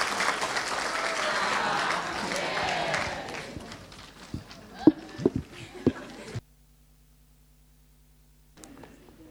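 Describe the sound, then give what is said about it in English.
An audience applauds a group of helpers with a loud, dense clapping that fades over several seconds into a few scattered individual claps, then stops abruptly into near silence before a faint noise returns. “You need to give them a clap, eh?”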